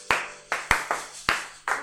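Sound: audience clapping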